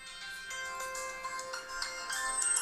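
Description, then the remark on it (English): A mobile phone ringtone, sounding for an incoming call, plays a bright, repeating electronic melody with quick pulsing notes, steady throughout, with no talking over it. “So apparently, this is my ringtone.”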